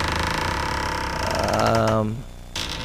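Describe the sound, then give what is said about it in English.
A long, strained creak of impending failing wooden boards low in a ship groans on with shifting tonal pitch, swelling louder before cutting off abruptly, followed by a brief burst of noise. “It's the creaking of the impending failing boards.”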